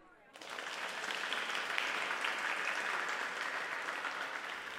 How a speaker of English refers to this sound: Okay, people, there's no time for applause.